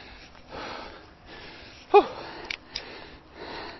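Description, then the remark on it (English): Heavy, labored breathing after a running interval: repeated breathy inhales and exhales with a sharper gasp near the middle, no talking. “So the next one, see how bad my breathing is.”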